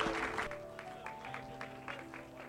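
An audience at a morning church service claps their hands to welcome a preacher to the pulpit: a dense burst of applause at first, then thinning into scattered, loosely rhythmic claps over a steady sustained organ-like tone, with no talking.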